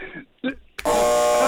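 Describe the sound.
A moment of speech, then an electronic buzzer is pressed and cuts in abruptly with a loud, steady, harsh tone full of overtones that holds until the end.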